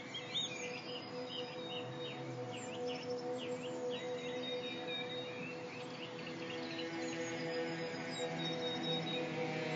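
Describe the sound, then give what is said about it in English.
Chirping birdsong recorded in an endangered UK woodland being cleared for the HS2 rail line, with quick, sweeping calls repeating throughout, layered over a steady, humming drone of sustained tones in a piece of experimental music. The bird sounds are moderately clear but blend into the dense, continuous background. “This project takes sounds from endangered woodland, including things like falling branches, birdsong, and uses those to create this amazing, haunting piece of experimental music.”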